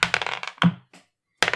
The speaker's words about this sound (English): Let's roll for it. I haven't rolled enough dice lately.